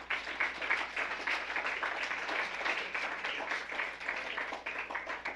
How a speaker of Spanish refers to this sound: Dele un aplauso fuerte al Rey de Reyes.